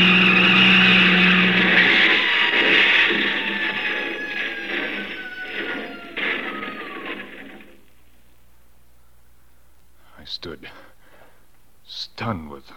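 A loud, roaring engine of a big truck coming around a bend in the road, with a falling pitch as it rushes past, fading away over several seconds, followed by quiet and a couple of brief faint sounds.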